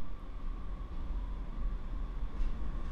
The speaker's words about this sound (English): Do you hear the train outside the window? Here it goes.